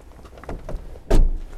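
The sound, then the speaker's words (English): A car door slams shut with one loud thud while the car is being locked up, preceded by a few faint clicks and handling noises, with no one talking. “And, whoops, a door is open.”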